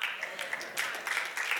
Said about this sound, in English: No, I got two claps on that.